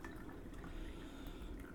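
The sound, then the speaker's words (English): A steady stream of water is poured into a cup over a used teabag to steep it a second time, a continuous splashing and trickling sound with no talking, lasting under two seconds. “So I guess we just give it a rinse or kind of a small bath.”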